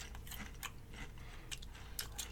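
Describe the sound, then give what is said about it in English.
Chewing of crunchy Lay's potato chips in a flavor inspired by Nashville fried chicken: a series of crisp, irregular crunches repeating every half second or so, fairly quiet, with no talking. “I mean, standard Lay's chip. A little soft on the crunch.”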